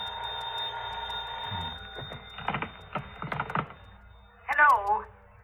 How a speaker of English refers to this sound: Must have been about 3:30 when the phone rang.